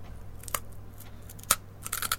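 Crisp, crackly crunches of someone biting into a hard, crunchy basil-flavoured snack: two isolated sharp bites, then a quick flurry of chewing crunches at the end, over a low steady hum with no talking.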